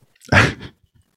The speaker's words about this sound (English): you're yelling a sound on a sneeze. That makes sense.